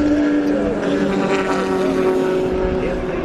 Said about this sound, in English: The different sounds they make, the different vehicles. The Mustangs really roar. They're loud. And the Corvettes, just their own sound.